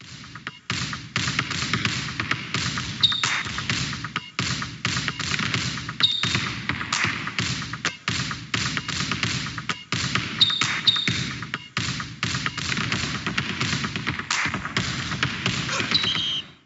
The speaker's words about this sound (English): And it was people just dribbling a basketball in darkness. Oh, yeah. With like off the knee, and then you put it in your shirt and you flip it around.